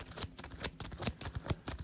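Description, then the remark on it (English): A deck of Doctor Strange invocation cards from a card game being shuffled, a quick run of crisp, papery riffling bursts that patter in rapid rhythm for a couple of seconds, with no voices. “Let me shuffle my out of invocation cards. Give me a quick shuffle here.”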